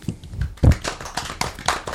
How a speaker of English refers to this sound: I'm clapping. All right. Enough of the clapping.